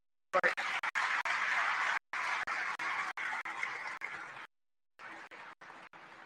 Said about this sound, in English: So a huge round of applause for all of the families that let us do this.